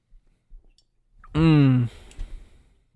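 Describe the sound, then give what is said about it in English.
A few faint wet clicks of someone sipping birch beer, followed by a loud, drawn-out satisfied "ahh" exhale lasting about half a second, then quiet mouth noises. “Let me take a sip of this Birch Beer here real quick.”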